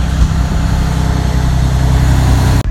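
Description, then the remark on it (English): A huge truck passes by outside, rumbling with a loud, steady low-pitched engine drone filling the whole stretch, cutting off abruptly near the end. “One second, a huge truck is coming by.”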